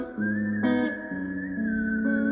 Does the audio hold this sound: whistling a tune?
yes